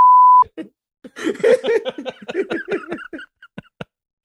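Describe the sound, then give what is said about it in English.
A short, loud, steady censor bleep sounds at the very start, cutting over a spoken word, then gives way to animated voices chattering and laughing. “oh, I got to bleep that too.”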